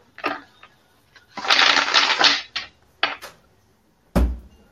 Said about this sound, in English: I'm shuffling away. Do you want me to drop the cards for you, friendo?